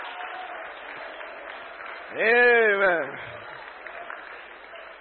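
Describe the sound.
A church audience at a Christmas service in Oman claps for Jesus steadily in a dense, continuous wash of applause, while a single voice calls out a drawn-out word partway through, rising above the clapping.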